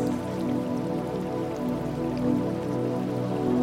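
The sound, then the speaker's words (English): Water crashes down in a steady, continuous rush, a dense wash of splashing and roaring that stays loud and even throughout, with no voices. “And of course, the water crashing down in all its glory.”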